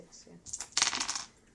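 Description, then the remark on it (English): Two six-sided dice clatter and tumble across a hard surface in a quick, bright rattle lasting under a second, fairly loud, with a faint murmur of voices just before; a 2d6 damage roll in a game. “Roll your damage with a quarter stone. 2d6.”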